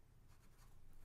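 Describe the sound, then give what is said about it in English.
A pencil scratches across paper in short, continuous strokes, fairly quiet, with a soft low rumble underneath and no talking. “I got my pencil out.”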